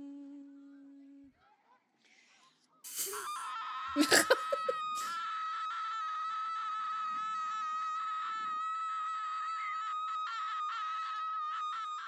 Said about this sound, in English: Oh, so … has Screaming at Geese. Those are not geese. Those are swans. Sorry. It's fine. Oh, no, those are geese.